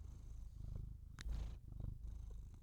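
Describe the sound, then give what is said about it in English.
A cat named Bullet purrs in a steady, low rumbling rhythm, with a brief louder rustle partway through as the purring continues. “So I'm going to try to see if Bullet will purr into the mic.”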